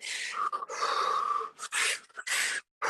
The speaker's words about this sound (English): Double inhales, single exhale. Just a double sip of air and oxygen. This is two-part breathing. Stay with this breath for one more minute.